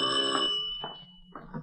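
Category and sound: household object, doorbell ringing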